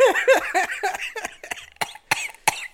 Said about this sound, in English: Next time you have a coughing fit, don't do it directly into the microphone.